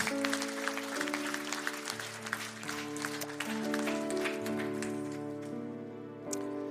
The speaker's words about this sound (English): Can anybody say amen? Let's give the Lord a hand clap of praise this morning, would you?